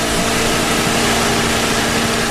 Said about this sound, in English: Ron's got that mower going on.